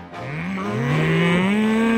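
A cow lets out one long, loud moo, its low droning pitch slowly rising and holding steady for about two seconds with no voices around it.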